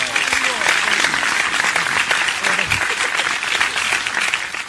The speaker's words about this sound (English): I'm clapping.